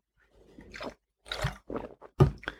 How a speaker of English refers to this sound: Now I want to do, I will do a sip here of a yerba.